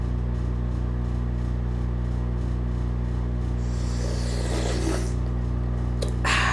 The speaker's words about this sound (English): Hold on a second. I gotta sip some of my tea.